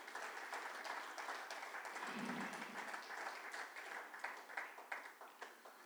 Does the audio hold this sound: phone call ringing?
no